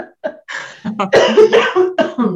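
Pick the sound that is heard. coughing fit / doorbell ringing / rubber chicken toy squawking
coughing fit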